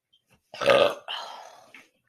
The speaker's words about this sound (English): I'm going to burp.